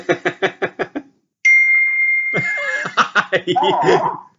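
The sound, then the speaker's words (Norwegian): A notification chime from a PC rings out as a steady, bright tone lasting about a second, sandwiched between rapid bursts of laughter that pick up again as it fades. “Må skru av lyden. Ja, men jeg har skrudd av på telefonen, men jeg kommer inn på PC nå”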